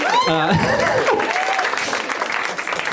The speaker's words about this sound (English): Just forcing applause breaks. We counting that? Count that down, please. You just mark it on the whiteboard. Thank you.